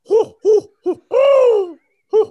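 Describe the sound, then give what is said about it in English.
A person imitates an owl with five voiced hoots: three short ones, a long drawn-out hoot that slides downward, then one final short hoot after a brief pause. “Hoo, hoo, hoo, hoo. Yeah, that kind of works too, but no, you ruined it now.”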